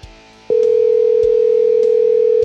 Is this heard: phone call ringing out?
yes